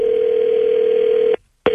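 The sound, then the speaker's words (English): An outgoing call from the KISS FM morning radio show's Waiting by the Phone segment rings on the line: one long, steady ringback buzz, a brief silent pause, then the next ring starts. It's loud, with no voices. “calling from the morning radio show on KISS FM.”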